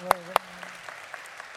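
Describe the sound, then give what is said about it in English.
Scattered claps from a crowd: two sharp claps up front, then lighter, sparse clapping trailing off, never building into full sustained applause. “Oh, you want applause? Let's apply.”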